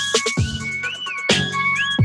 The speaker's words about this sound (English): All right, here we go. Like a police whistle.